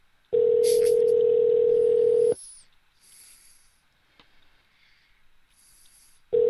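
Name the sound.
phone call ringing tone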